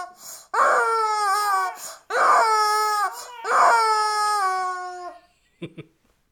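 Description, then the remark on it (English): A rubber chicken toy squeezed three times in a row, each a loud, drawn-out, wavering squawk lasting over a second, followed by a couple of faint clicks. “Rubber chicken blowjob.”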